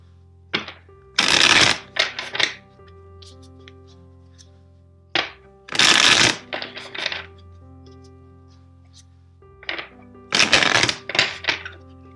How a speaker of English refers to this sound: Now let's start with your reading. First, let's shuffle the deck 4 times for you.